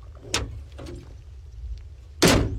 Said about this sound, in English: That's a good one. You like that one? Yeah. It's a bunch of doors.